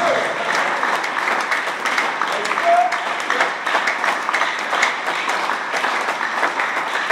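An audience claps together in a dense, continuous patter of many hands, holding a steady, moderately loud level for several seconds with no voices rising above it.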